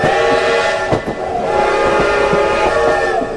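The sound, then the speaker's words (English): A train, driven forwards and backwards, up and down in the Century Building, rumbles along steadily and loud, with sustained whistle-like tones ringing over it and a few heavy clunks. No one speaks. “Oh, that's some fool driving his train forwards and backwards, up and down this, the opulent Century Building.”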